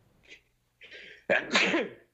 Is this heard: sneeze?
yes